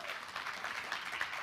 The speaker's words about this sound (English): All right, thank you. Give him a big hand clap.